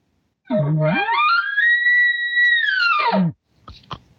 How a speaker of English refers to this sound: You see, that's when you can tell the difference between the two. You have a location bugle and a bull's going.